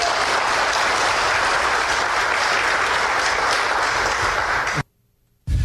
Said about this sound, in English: That's okay. You can applaud. That's a great thing to applaud.